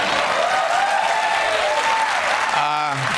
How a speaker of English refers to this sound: Feel free to applaud.